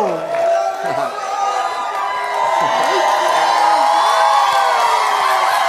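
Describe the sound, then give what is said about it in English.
A crowd cheers and screams loudly and continuously, with high-pitched whoops and a short whistle cutting through the dense, excited roar of voices. “That little whistle, that's me.”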